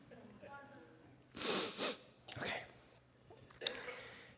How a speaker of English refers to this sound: I'm trying not to sneeze right now.